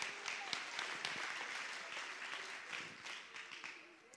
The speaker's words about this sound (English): Clap your hands one more time, church, if you believe it.